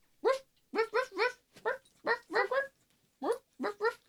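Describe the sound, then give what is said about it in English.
A male pet puppy whines and whimpers in a run of about ten short, pitched bursts, some grouped in quick pairs and triplets, with brief pauses between them. “My puppy, you're so cute. You're such a good boy. Do you want to say hi to everybody?”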